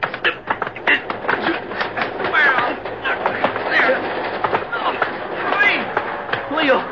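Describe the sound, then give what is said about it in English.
A chaotic scuffle aboard a moving train: thumps, slams and shuffling bodies, with strained voices shouting over it and a steady mechanical rumble of the train underneath, fairly loud throughout. “One more crack and I'll knock you clear off this train.”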